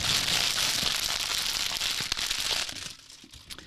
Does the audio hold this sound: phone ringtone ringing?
no